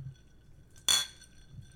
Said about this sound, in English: Because you hear that ice in that glass right there? This glass it's is like, very sturdy.